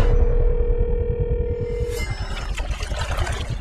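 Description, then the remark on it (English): A steady, unbroken telephone dial tone hums for about two seconds over a low rumbling background, then cuts off abruptly as a busier, noisier wash of sound takes over. “We get disconnected.”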